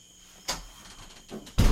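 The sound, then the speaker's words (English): A door is pushed shut: a couple of brief scraping movements followed by a heavy thud as it closes, with no one speaking. “You want to close that door before we go for the Bucks?”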